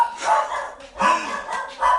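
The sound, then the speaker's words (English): Several of the speaker's dogs bark in quick, overlapping bursts, three loud peaks close together with yips between them, with no talking. “Sorry, it's my dogs.”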